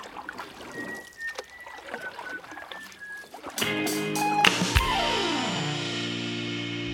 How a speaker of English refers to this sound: A dinghy is a small boat used to travel from the ship to the shore, where the water is too shallow for a large ship. So pirates would load their treasure chest into a dinghy and row it to land.